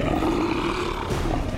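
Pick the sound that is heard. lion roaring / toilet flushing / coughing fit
lion roaring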